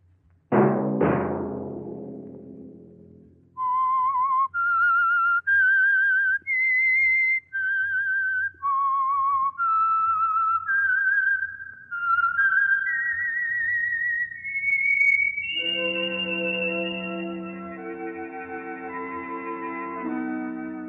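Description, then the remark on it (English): A clear whistled melody of about a dozen sustained notes climbing and dipping in a slow, eerie tune, followed by a fuller instrumental chord swelling beneath the final held note. “Let that whistle be your signal for the Signal Oil program, The Whistler, each Sunday night at the same time.”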